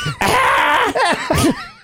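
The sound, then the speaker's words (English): A loud, harsh scream heard over a phone call bursts out and holds for most of a second, followed by a shorter second cry with a wavering, bending pitch before it trails off as the caller hangs up. “Somebody just screamed on the phone and hung up.”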